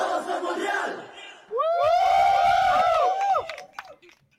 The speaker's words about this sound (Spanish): Esos últimos gritos de yo tengo algo que decir.